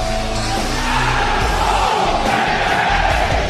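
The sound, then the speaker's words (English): A crowd of about 6,000 chants together in unison, a loud, dense roar of voices that swells and holds steady for a few seconds, sounding like a rhythmic collective yell. “You heard the crowd, all 6,000 of them, in unison, do this.”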